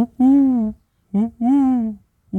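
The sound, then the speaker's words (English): A person imitates an owl's hoot with their voice: drawn-out, steady, mid-pitched hoos in an uneven long, short, long rhythm, with another starting at the very end. “owls. That's an owl.”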